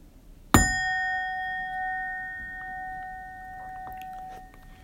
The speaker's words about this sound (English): Let me go ahead and ring the bell.